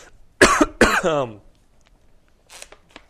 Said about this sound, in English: I'm coughing.